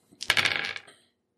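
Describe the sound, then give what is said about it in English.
A short, bright clatter of four dice tumbling across a hard tabletop, rattling briefly before settling into silence within about a second; the dice are rolled for initiative in a game. “First, you roll for initiative. This is just an unmodified finesse chest.”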